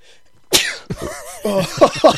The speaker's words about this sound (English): Oh, that hurt. I went to sneeze and I felt the burp build up.